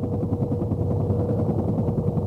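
A medevac helicopter's rotor thumps in a fast, steady rhythm over a deep engine drone, loud, with no voices, on a combat mission in Vietnam.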